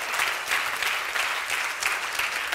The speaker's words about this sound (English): Give them a hand clap, man. They do good, don't they?